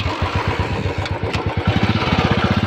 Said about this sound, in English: That sound you're hearing belongs to the legendary bike, the Bullet. While Royal Enfield has British origins, it's now an Indian-owned brand, and the recently relaunched Bullet stays pretty close to its 91-year-old predecessor.